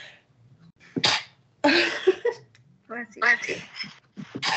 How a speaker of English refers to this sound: I'm going to sneeze.